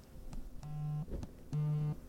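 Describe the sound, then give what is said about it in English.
A phone rings with an incoming call from the speaker's mother, two steady electronic tones, each lasting under half a second, separated by a short gap, fairly loud over light background noise. “Oh, shit, dude, this is my mom on the phone.”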